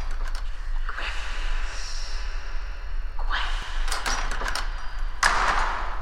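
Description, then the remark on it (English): A door is opened in a few stages, with scraping, swishing movements and a sharp rattling burst near the end, with a low steady rumble underneath and no one speaking. “I'm gonna open the door.”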